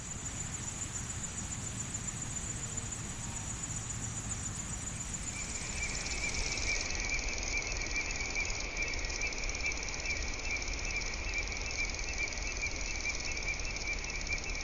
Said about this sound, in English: I'm hearing a lot more than just that rasping. I hear that, but then I also hear song. What's going on there? So this is a chorus of crickets from a meadow in late summer in Tennessee.